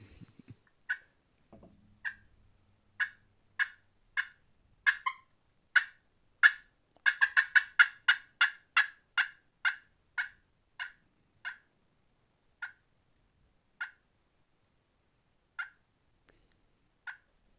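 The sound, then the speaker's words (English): A slate-over-glass turkey call works through a long series of raspy yelps and sharp clucks, starting sparse, building into a fast rapid run, then slowing back to scattered single notes. No one speaks. “It does amazing raspy yelps, clucks, and even fighting purrs.”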